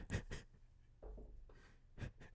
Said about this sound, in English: It's got a stylus too, baby. You like the stylus? You want to use the stylus? Huh? You hear that click?